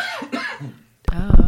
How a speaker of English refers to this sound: I muted my microphone. So I could cough, but it probably picked up on yours. It did. I'm sure it did.